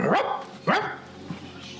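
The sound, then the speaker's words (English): A dog barks twice, fairly loud, the two sharp barks spaced about half a second apart, followed by a faint, brief yip, with no talking. “I got a funny story about that, about me doing dog impersonations.”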